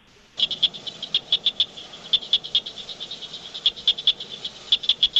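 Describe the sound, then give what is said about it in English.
Southern cricket frogs calling with rapid, sharp clicking notes in irregular bursts, a chorus of several frogs with some louder and closer, others fainter in the background, no voices. “Yeah, let's get into that southern cricket frog.”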